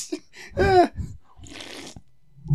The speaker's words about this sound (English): The fucking slurp.